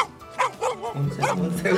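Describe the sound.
A person imitates a barking dog, letting out several short, voiced woofs and yelps in quick succession, fairly loud.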